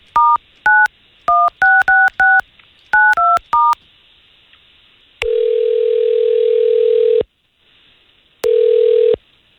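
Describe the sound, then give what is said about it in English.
A quick run of about ten telephone keypad tones, each a short two-pitch beep, as a phone number is dialed to call a woman, followed by two long, steady ringback tones with a pause between them, loud and clear with no talking. “All we're going to do here is get her phone number and see if we can call her.”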